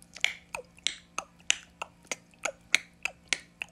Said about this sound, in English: That's my ticking sound effect.